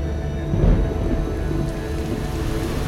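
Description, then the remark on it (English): Steady summer rain pours down while a low rumble of thunder swells and rolls early on, then fades back into the continuous wash of rainfall. No one speaks. “Cortex, a nice summer storm. Something to cool our guests off.”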